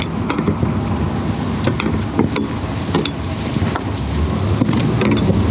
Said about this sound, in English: When the deckhands pull the quick release hook, things happen fast. The skiff drives off one way, the big boat the other. The net starts to pay out.